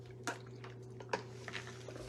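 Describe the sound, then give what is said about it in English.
Two soft, wet gulping clicks, about a second apart, then a few fainter mouth sounds, like someone taking quiet sips of water over a steady low electrical hum. “Hold on, more water.”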